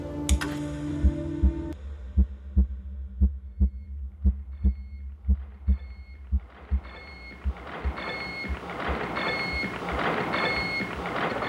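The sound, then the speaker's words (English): Steady, evenly spaced thumping pulses like a slow heartbeat, loud, over a low electrical hum that swells into a broad mechanical whir with faint high tones toward the end; the heartbeat of the SAGE computer, in a room of monitoring and control instruments. “You are listening to the heartbeat of the Sage computer.”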